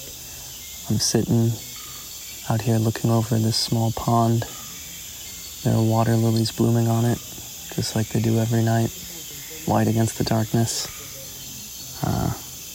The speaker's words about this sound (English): You hear all that? If you can, it's the sound of the Amazon jungle at night.